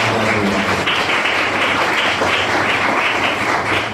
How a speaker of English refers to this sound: Without them, this event wouldn't be here tonight, so they deserve the biggest round of applause.